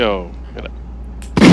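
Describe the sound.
A voice trails off with a falling tone, then a sudden loud gunshot sound effect bursts in right at the end, a single booming blast.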